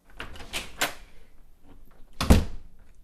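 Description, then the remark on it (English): A few light clacks and rattles of handling, then a solid door slams shut with a heavy low thud and brief ring-out, no voices. “He showed Chris and Sam doors in his house, and then they listened to all sorts of doors.”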